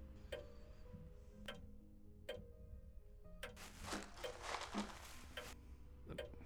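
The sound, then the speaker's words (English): Footsteps crunch through dry autumn leaves: a few separate crackly steps about a second apart, then a busier stretch of rustling crunches and one last step, all fairly quiet with no talking. “Actually, why don't you walk around in them? At least the listeners can hear what we're talking about. The crunching of leaves?”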